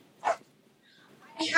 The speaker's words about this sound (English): Just dog, I'm sorry. It's okay, it's cute.